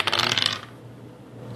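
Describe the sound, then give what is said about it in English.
A quick burst of dice clattering and rattling across a table for about half a second, fairly loud, then settling into near silence. The dice are rolled to hit in a tabletop game and land on 73. “God damn it, I'll hit you stupid dice.”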